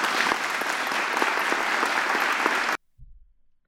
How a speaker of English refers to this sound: I'm a genius. Oh. Play the applause again.